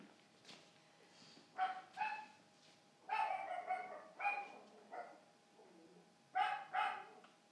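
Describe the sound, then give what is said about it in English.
A dog barks repeatedly in short, paired bursts with brief pauses between them, not loud, with no one talking. “Of course, they can't take dogs.”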